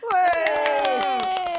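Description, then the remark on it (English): An audience claps in a brisk, steady patter welcoming a comedian guest, while a high voice holds a long, slowly falling cheer over the applause. “You should clap for yourself.”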